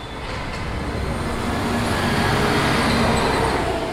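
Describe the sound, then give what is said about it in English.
Steady, loud roar of road traffic with heavy engines rumbling as buses pull out of a bus station exit at 10 p.m., recorded from a living room window across from it; a dense continuous wash of vehicle noise with no voices. “This is a recording from his living room window at 10 p.m.”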